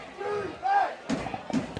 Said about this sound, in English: As the crowd comes alive.